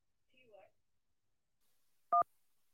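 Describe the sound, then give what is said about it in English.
A single short, loud telephone keypad tone beeps near the end as the phone lines are opened for callers, a clean two-pitch touch-tone after a brief, faint murmur of voice and a quiet stretch. “Go ahead and jump to the phone lines.”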